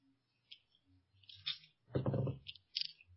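Dice are rolled for a will save in a tabletop game, clattering across a hard surface in a few short, bright bursts of rattling clicks, fairly quiet, with a brief low vocal murmur in the middle.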